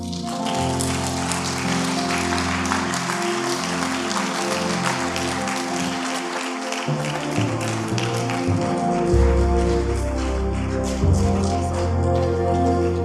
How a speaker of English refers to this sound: We can do better than that. Keep clapping, keep clapping.